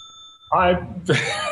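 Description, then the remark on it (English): A bell rings once with a clear, sustained metallic tone for about half a second before people start talking loudly and the ring is cut off. “The bell is so off-putting.”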